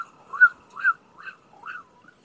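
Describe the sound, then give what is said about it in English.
Birds chirp in a short series of four or five bright, tonal calls, each sliding up or down in pitch, spaced about half a second apart with quiet gaps between. “Shut those birds up!”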